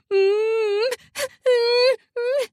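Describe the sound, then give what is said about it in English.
A fairly loud voice hums and whimpers in long wavering tones, broken by short breathy gasps between them, giving a halting rhythm much like sobbing. “I hum and whimper almost to the rhythm of a sob.”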